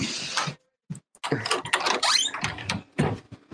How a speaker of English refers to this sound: Okay, I locked the door.